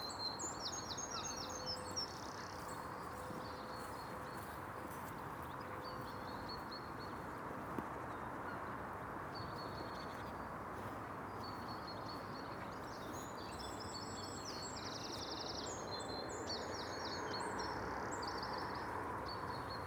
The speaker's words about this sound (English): A gull cries above the haven.